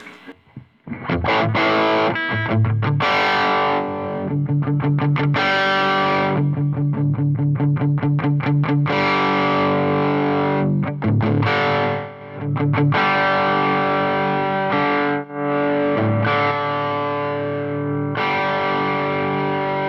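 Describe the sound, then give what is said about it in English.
Electric guitar played through an overdrive pedal plays a loud, gritty riff alone, mixing rapid chugging strums with ringing sustained chords and a few brief pauses between phrases. “Could This Be the One Overdrive to End the Search?”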